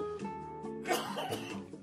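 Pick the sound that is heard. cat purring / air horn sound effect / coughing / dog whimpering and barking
coughing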